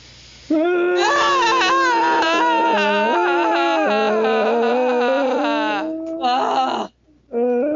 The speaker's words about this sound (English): Maybe we should have a moment of screaming to honor Jim Knife. We should. Yeah. You ready? All right.